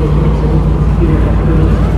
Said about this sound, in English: They're V8s. Oh, maybe that was a Corvette running actually. That sounded a bit dirty to me. That sounded more like the Corvette engine from the next garage.